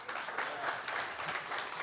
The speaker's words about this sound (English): Yes. Don't clap for them. They're not perfect either.